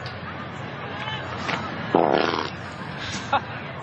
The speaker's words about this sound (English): Look at him laughing. He just farts. Like, it's no problem. I'm fucking Tiger Woods. I can fart.